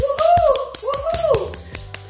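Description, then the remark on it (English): Around ten sharp claps land at a quick, slightly uneven pace, welcoming the speaker's son, while a voice carries rising and falling tones over them, with no clear words. “Let's give it to him with a big round clap of applause.”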